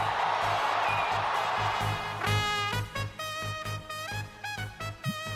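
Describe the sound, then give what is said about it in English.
A loud baseball stadium crowd roars and cheers after a game-winning home run by Chris Morrell of the Cubs, in a dense, steady wash, with sustained horn-like tones blaring over it partway through and a low rhythmic thumping underneath. “Listen to this crowd.”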